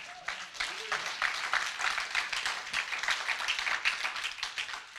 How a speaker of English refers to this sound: Come on, give the Lord a great clap offering, amen.